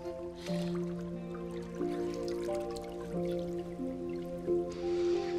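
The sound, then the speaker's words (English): Water softly dribbles and drips from a squeezed sponge over a woman's body in a bathtub, a quiet trickle with small splashes, set against a steady low hum. “He dribbles water over her breasts.”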